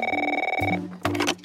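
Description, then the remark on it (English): A telephone rings with a fast, trilling electronic warble, loud, followed by a brief burst of brighter tones before it cuts off; a phone call coming in while working late at an office. “You're working late at the office when you get a phone call from your boss.”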